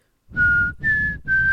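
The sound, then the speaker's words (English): A person whistles a short three-note tune, each note held steady with a slight change in pitch and a breathy, airy quality, separated by brief pauses. “No, you added an extra whistle.”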